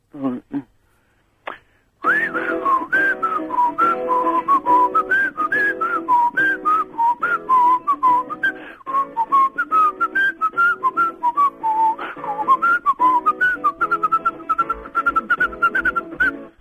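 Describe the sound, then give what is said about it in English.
Someone whistles a lilting tune, clear, holding a steady, flowing melody for about fifteen seconds with gently rising and falling notes, after a brief moment of quiet sound at the start. “Well, what do you like whistling?”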